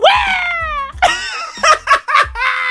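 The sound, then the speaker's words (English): A voice imitates an eagle's cry: one long, wavering high-pitched screech followed by three or four shorter, sharper shrieks, loud and uninterrupted by talk. “Is that how a fucking eagle sounds?”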